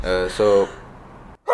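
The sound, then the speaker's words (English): A single sneeze: a voiced intake, then a sharp hissing burst and a tonal cry that fades out. A voice starts talking right at the end. “Bless you.”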